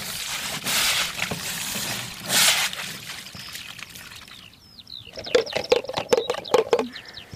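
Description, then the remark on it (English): Water sloshes and pours out in uneven rushing bursts as all the water is sluiced out of a pond shaped a bit like a satellite dish in a takahē pen, then gives way to quicker splashes and a few chirpy bird calls near the end. “Sluicing out all of the water out of a pond that looks a bit like a satellite dish.”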